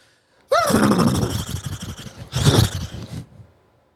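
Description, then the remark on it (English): Someone vocally imitates a horse: a loud, wavering whinny followed by a second breathy, sputtering burst like a snort, lasting about three seconds in total. “Can't do any other horse noises.”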